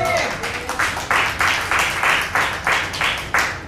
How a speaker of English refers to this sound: I was actually privileged and honored to help to serve at a 100th anniversary for a ministry. And that deserves a round of applause.